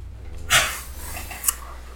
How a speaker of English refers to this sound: The dog's being picked up. Hello, dogs.